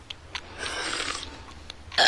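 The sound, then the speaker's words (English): A drawn-out, rasping burp from a kids' burp contest in The Simpsons rumbles for about half a second, followed by a quieter stretch and a sudden louder burst right at the end, with no talking. “We're having a burp contest, Mom.”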